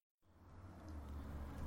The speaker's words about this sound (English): And I hit record just as a bus goes past the window and we get bus noises, but we can just talk about that.